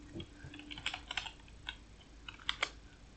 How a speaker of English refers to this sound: That all depends on my ability to spell Ephesians. Okay. So while you're typing that